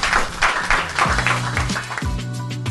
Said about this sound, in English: Okay, well done. Big round of applause.